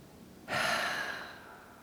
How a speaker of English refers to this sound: Last one, taking a deep inhale, holding the breath, and exhaling completely.